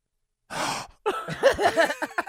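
A man's sharp, breathy gasp of surprise on being introduced to a woman's mother and father, followed after a brief pause by a run of voiced, wordless exclamation sounds from him.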